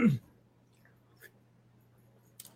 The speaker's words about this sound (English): I need to take a sip of water here, excuse me.